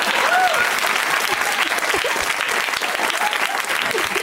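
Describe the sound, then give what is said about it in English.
A comedy show audience claps for a woman from the crowd, a dense wash of applause that holds at a fairly loud, even level throughout with no pauses, and a few faint cheers or whoops rising briefly near the start. “Give it up for this gal.”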